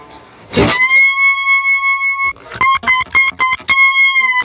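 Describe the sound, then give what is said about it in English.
A distorted electric guitar, a stock Stratocaster with true single-coil pickups, rings out loud, a struck chord sustaining, then a quick run of choppy repeated notes before another held chord, with no 60-cycle hum and no talking. “This is just the stock Strat, you know, but... Because there is no 60-cycle hum.”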